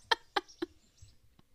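A rooster lets out three short, sharp clucks in quick, even succession, followed by a faint fourth cluck after a pause; no one is talking.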